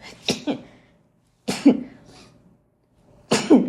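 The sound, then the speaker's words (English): Three sharp sneezes, each a sudden breathy burst with a voiced edge, spaced a second or two apart with quiet gaps between them and no talking. “Jeez, you ever hear when someone say that when you sneeze after you say something, it's true?”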